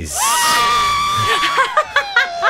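A crowd of fans cheering the Leafs on at Maple Leaf Square, loud, with one shrill, sustained high-pitched scream riding over the roar, then a run of short, rhythmic shouted bursts toward the end.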